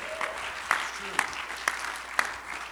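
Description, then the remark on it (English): An audience claps hands to the Lord: a handful of sharp, scattered claps, roughly evenly spaced, ring out over a steady low murmur of background noise. “Come on, somebody clap your hands to the Lord today.”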